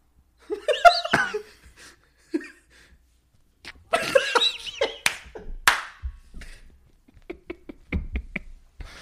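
Someone repeatedly tries and fails to snap their fingers, producing a scattered series of short, dry clicks at uneven intervals, with bits of laughter and vocal noises mixed in.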